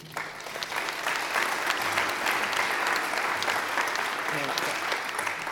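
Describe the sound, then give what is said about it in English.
Steady applause from an audience welcoming a speaker, a dense wash of clapping hands that holds at an even, fairly loud level for several seconds without letting up. “Would you please help me welcome”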